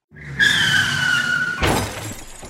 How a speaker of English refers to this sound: That sound can only mean one thing, and one thing only. Yet again, we have been crashed.